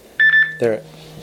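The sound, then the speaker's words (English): The speaker's mobile phone, lying across the room, rings with a short electronic tone, two quick high-pitched pulses, then a person's voice briefly cuts in over a low steady hum. “My phone's across the room, so I may be diving up at some point.”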